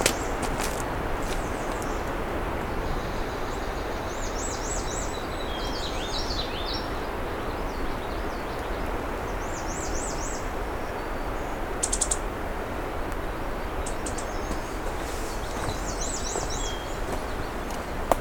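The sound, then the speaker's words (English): A female black-and-white warbler, crawling upside down on trees, gives high, thin chirps repeating in short wavering bursts every few seconds, fairly faint against a steady rushing background of wind or water, with no voices. “Oh, it's a female black and white warbler making that sound.”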